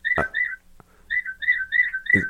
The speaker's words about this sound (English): That's my bird clock in the background. Okay, I was wondering, is that an actual notification right now?